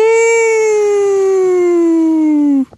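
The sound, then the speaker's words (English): A person vocally imitates a four-alarm siren with one loud, sustained wail that slowly drops in pitch for about two and a half seconds, then cuts off abruptly. “That would have been great to have a four-alarm siren playing just now. I tried to my best to simulate one.”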